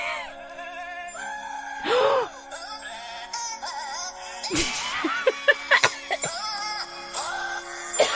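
Goat bleats strung together into a slow rendition of the carol Holy Night, with wavering, sustained nasal tones shifting pitch, broken up by a few short, rough bursts near the middle and end.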